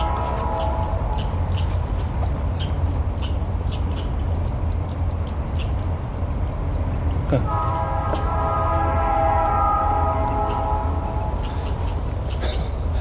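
An angry chipmunk chatters in rapid, sharp high chips that repeat irregularly throughout, with a steadier, squealing run partway through, all over a constant low rumble.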